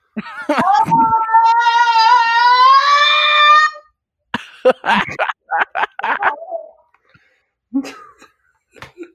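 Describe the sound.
A person lets out a loud, drawn-out screeching yowl for about three seconds, imitating a feral cat, followed by short choppy vocal bursts and a brief final squeak.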